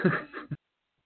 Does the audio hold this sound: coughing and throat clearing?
yes